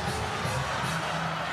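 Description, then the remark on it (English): A large arena crowd at a basketball game in South Florida against the Warriors cheers loudly and steadily after a dunk and a foul, a dense roar of many voices with shouts rising out of it, holding at full volume without a break. “The crowd getting into it here for really, they've been excited, but they really got excited with that one.”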